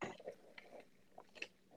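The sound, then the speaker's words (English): Quiet mouth sounds of someone sipping and swallowing water: a few soft wet clicks and gulps spread across a couple of seconds, with no talking. “I took a sip of water.”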